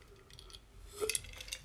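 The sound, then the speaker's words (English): A quiet sip of water from a glass: faint handling rustle, then a couple of bright, brief glassy clinks about a second in, with no talking. “I'm just going to take another sip of water because I'm getting really excited.”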